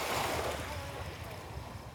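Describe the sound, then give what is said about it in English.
Lake Michigan water washes and laps steadily around a blue boat being paddled, a continuous rush of water with a low rumble and some wind buffeting underneath, with no clear voices. “It's water. Oh, did he do a good job paddling you along on the water?”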